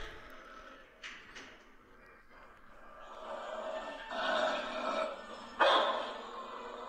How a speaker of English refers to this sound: That other barking is dogs in the facility, but listen to this. You hear that growl? She's growling, and she has to take a breath. She's got that thing in her mouth. She does not want to move, and you better not move either.